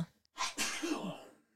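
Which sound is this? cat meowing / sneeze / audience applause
sneeze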